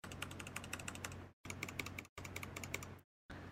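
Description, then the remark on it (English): Rapid keyboard typing with dense clicky keystrokes in three bursts separated by brief silences, plus a short final burst, with no voices present; the keyboard's D key has been replaced with a gray textured gaming key. “So there's just this gray like textured gaming key on my keyboard. And it doesn't sound like the other keys.”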